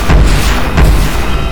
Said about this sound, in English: Computer, launch pods. 1, 2, and 3. Launching pods. 1, 2, and 3.